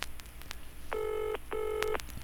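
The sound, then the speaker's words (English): Two steady electronic ringtone bursts, each about half a second long with a short gap between, sounding like an incoming phone call, clear over faint background noise. “I think we have a call coming in. 1 second. Let me see if I can pick this up.”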